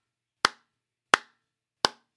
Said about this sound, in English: I don't know if that's going through on the immediate, but it will come through later because I needed the slow clap. I needed the Chang slow clap for that. Discord was like, I'm muting these claps.